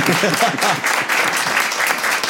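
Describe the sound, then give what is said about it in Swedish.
Audience applause for the people who asked the question, a steady dense wash of many hands clapping at an even loudness throughout, with a faint voice or two underneath. “Först bara, kan vi inte ge dem en applåd för att de ska göra det här?”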